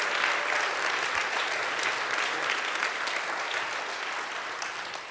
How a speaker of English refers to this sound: We got a quick clap, and so we can get to the questions.